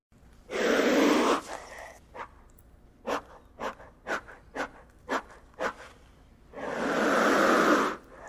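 A lizard lets out two long, loud breathy hisses, with a series of short, sharp huffing puffs between them, some spaced evenly and others quickly bunched.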